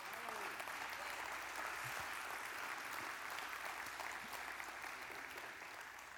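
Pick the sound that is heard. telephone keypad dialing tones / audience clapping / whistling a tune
audience clapping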